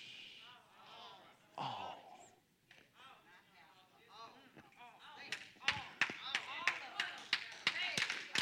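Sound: a clap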